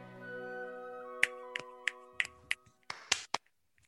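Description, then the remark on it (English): A quick series of crisp finger snaps, about eight or nine in uneven rhythm, rings out sharp after a sustained tonal chord fades, with a brief noisy burst near the end. “Snaps all around, my friend. Snaps all around. Snaps and claps.”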